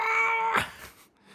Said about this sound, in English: That's cat, yeah.